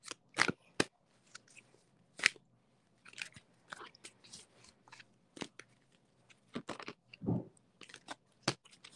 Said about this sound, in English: I'll shuffle the pack.